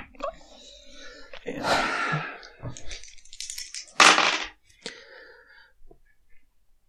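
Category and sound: household object, dice being rolled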